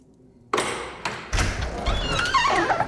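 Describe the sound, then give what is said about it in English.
A few heavy, dull knocks land on the wooden front door of a manor house about half a second apart, followed by a fuller rumble of movement and a faint creaking, wavering tone. No one speaks. “Answer the front door, will you, old boy?”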